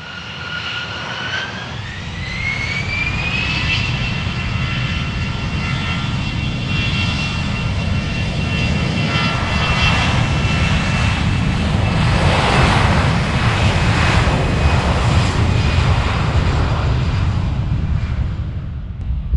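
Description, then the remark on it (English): A low-flying airplane roars past right over the kitchen, a loud, steady engine rumble with a rising whine early on, holding strong for nearly twenty seconds with no talking. “That's a bit low, Simon. Yeah, that was. Right over the kitchen, that one.”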